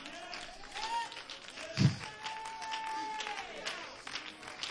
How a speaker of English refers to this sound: Brother, right there, clapping your hands.